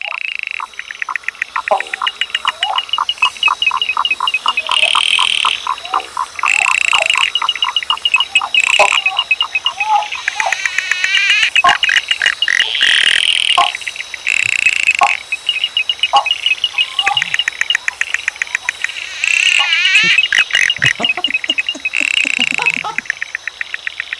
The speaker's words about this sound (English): These are the frogs that are replacing … on the Australian charts.